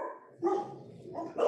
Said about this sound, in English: Oh, okay, shut up, dogs.